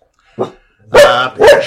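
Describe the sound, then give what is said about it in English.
Dogs bark sharply at a person outside, at Dog Kennel Studios in suburban Philadelphia, Pennsylvania, USA: one short, softer yap followed by two loud, full barks in quick succession, with no talking. “We've, oh, the dogs. Oh, no. There's a person outside, and okay.”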